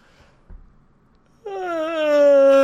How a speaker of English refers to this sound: Okay, great. Yep, we'll just pause for you to yawn,